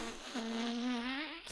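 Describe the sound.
A voice makes a fart noise with the mouth, one steady buzzing blow lasting about a second and a half, fairly loud and low-pitched, with no talking over it.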